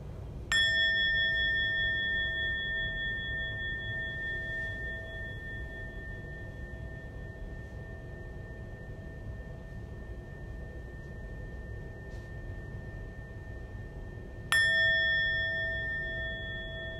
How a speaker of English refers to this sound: And we listen to three sounds of the bell.